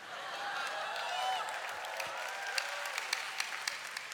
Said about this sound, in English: I know, I've no time for your clapping, but I do like it.